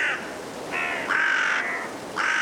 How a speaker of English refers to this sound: We leave you this week in a cold woodland at dusk with a murder. A murder of crows, that is. Five carrion crows calling through the blustery winds in Woodchester Park in Gloucestershire, England.